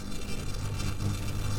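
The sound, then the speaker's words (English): A sonified artwork, Black Rain by the artist Semiconductor, built from data from a pair of satellites called the STEREO satellites: a steady, dense wash of hissing noise over a deep rumbling hum, holding an even loudness throughout with no voices. “So we're listening here to an artwork called Black Rain by the artist Semiconductor, and they've worked with data from a pair of satellites called the STEREO satellites.”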